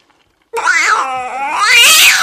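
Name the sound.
cat yowling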